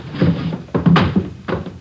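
The door of room 11 on a second floor is tried and pushed open: a short series of dull wooden thunks and clunks, several in quick succession, then one more knock, with no voices.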